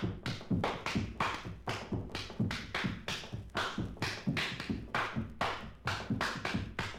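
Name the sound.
rhythmic hand clapping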